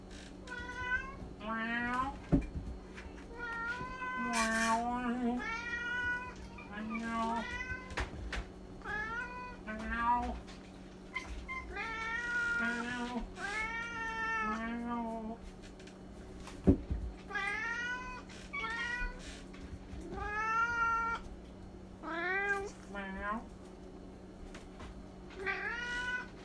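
Several cats meow again and again while being offered food, in a steady, overlapping chorus of drawn-out, rising and falling cries, loud, with a low steady hum underneath and occasional clunks.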